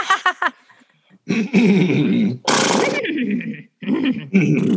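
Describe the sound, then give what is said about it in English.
A person imitates a horse with several loud vocal bursts: wavering, neigh-like whinnies, a harsh breathy snort in the middle, then more whinnying after a brief pause. “So you want to do some horse sounds with me?”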